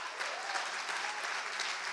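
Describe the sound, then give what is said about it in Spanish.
An audience at a Christian sermon claps steadily in a dense, continuous wash of applause for the whole stretch, called for by the preacher, with no voices standing out above it. “A ver ese aplauso.”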